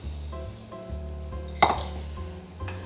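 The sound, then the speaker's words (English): A brief clattering rush of quinoa and amaranth grains tipped into a pot of 4.8 cups of boiling water, rising suddenly and fading within a moment, over a steady low hum. “So the water is boiling, so I'm going to add the amaranth and the quinoa.”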